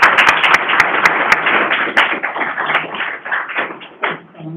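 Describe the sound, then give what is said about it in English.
An audience at a certificate presentation applauds steadily, a dense wash of many hands clapping with a few sharp, loud individual claps standing out early on, then thinning slightly toward the end. “so we're going to clap you one more time anyway.”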